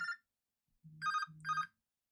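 A phone's electronic ringtone plays for an incoming call: a short bright chime, a pause, then two repeated melodic bursts layered over a low humming tone, with no one talking.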